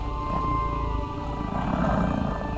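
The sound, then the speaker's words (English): A deep, rumbling animal growl runs steadily through the whole stretch, low-pitched and fairly loud, echoing down an alleyway in a quiet city; no one speaks. “The city is peaceful, aside from the growling behind me, echoing down the alleyway as Harao and our pursuer engage harsh words in their language.”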